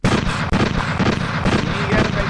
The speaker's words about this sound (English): At the gunshots right here.